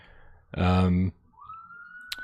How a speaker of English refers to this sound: Sirens on my end.